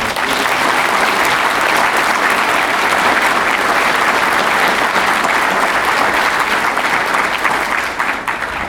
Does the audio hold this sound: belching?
no